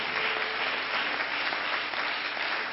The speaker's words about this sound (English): Why don't we just give our graduates a good hand clap, congratulating them.